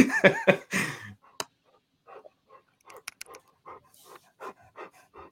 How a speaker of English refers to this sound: I was gonna say, kill the dog noise. Terrible.